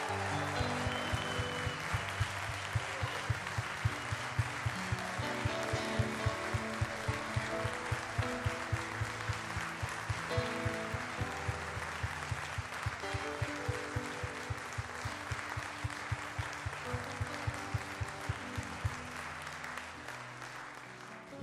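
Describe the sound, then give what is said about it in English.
Loud, sustained applause from a large church audience honoring veterans for their service lasts about twenty seconds, steady and dense, with music playing underneath and a rhythmic beat running through it. “Hey, can we give all of these veterans, and maybe those online that are watching today, can we give them a thunderous applause for their service?”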